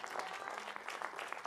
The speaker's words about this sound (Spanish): De un aplauso de alabanza al Señor.